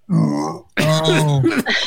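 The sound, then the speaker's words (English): A dog lets out two loud, drawn-out belches in quick succession, the second longer and gurgling, with no talking over them. “My dog belch was tight.”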